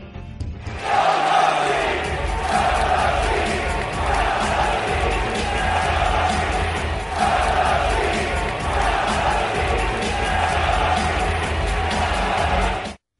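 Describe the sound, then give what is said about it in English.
A large crowd of basketball fans in an arena roars and yells steadily as the Knicks are being blown out, for about twelve seconds, loud and dense, with the noise swelling in a few waves before cutting off abruptly. “Listen to the fans as the Knicks were getting blown out last night.”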